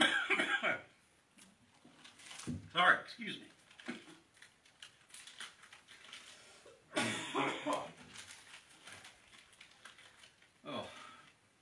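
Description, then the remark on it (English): A coughing fit: several harsh, raspy coughs arrive in bursts, with a throat-clearing rasp and quiet rustling in the pauses between them. “gotta have another cough drop here. I'm very sorry about this.”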